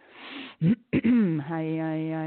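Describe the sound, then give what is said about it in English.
A breathy exhale, then two short, rough throat-clearing coughs, followed by a steady held vocal hum that carries to the end. “Coughs, burps, whatever way.”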